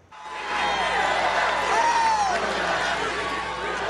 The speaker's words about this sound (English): With crowds cheering, fill that seat at a campaign rally, U.S. President Donald Trump promised he will do just that within days of Justice Ruth Bader Ginsburg's passing.